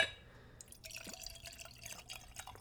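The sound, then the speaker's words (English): Whiskey of 40% alcohol by volume trickles and splashes into a tulip-shaped nosing glass for a couple of seconds, a steady, bubbly pour with no one speaking. “So I'm going to pour myself some, and as I do with all of my tastings on this podcast, I'm using a nosing glass.”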